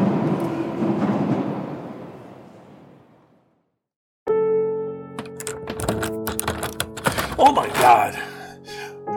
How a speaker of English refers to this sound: Hallway, trying to open the back door.